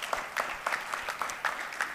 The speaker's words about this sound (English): That is worthy of an applause for God, right? God is doing great things here.